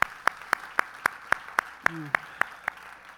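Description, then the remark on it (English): Steady, evenly spaced hand claps, about a dozen sharp beats in quick rhythm, clear, with a brief voice sound partway through, as the audience of Grace Fellowship Church applauds the Lord during morning worship. “Let's hear a round of applause for him.”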